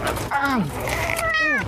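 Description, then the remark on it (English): Two drawn-out, loud cat meows, each rising then falling in pitch, the second following shortly after the first. “There's so many cats in here.”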